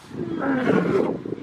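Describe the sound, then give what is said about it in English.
A tiger lets out a single drawn-out yawning roar, a low, throaty groan that swells and wavers for a second or so before trailing off, alone. “It's just a yawn.”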